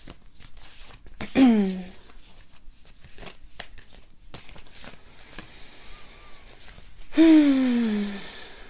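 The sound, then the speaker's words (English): A deck of oracle cards, laid upside down, being shuffled to pick a single card, with a steady patter of soft papery slides and taps, broken by two louder sweeping bursts near the start and end. “I'm going to shuffle. They're upside down. I'm just going to shuffle around and feel into it.”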